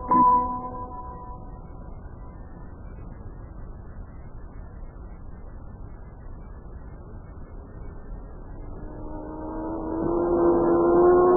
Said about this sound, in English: Crazy, what was that thing ever going fast? I should say it was, Sparky. That car was really traveling, all right. Yeah. How fast do you think it was going? Think it's 100 miles an hour? Oh, I imagine it was going at least 100 miles an hour.